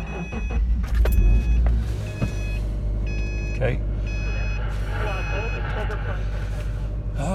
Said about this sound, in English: It's been about 10 minutes and she's not responding to my calls to come back in, so time to go out to the car and start it up and see if I can call her back in that way.